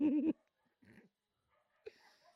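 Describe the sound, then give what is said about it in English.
A dog in a film gives a short, loud, wavering whimper, followed by two quieter, breathy whines with a pause between them. “It's a strong-ass dog, though.”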